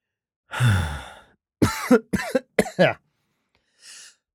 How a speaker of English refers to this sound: Not a COVID cough, it's just me.